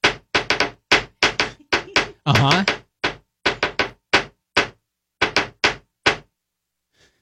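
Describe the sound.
A rapid series of sharp, hollow knocking bangs in uneven clusters, tapped out as Morse code yes/no answers (one bang for a case, two for no case), with a brief voiced murmur of assent partway through and one faint final tap.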